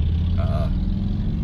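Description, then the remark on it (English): A loud motorcycle idles beside a vehicle at a stop sign with a steady, low, throbbing engine rumble, broken briefly by a thin, high whine partway through. No voices are heard. “And now, you know, that we're at a stop sign next to a loud motorcycle, maybe you can enjoy that, maybe you can't.”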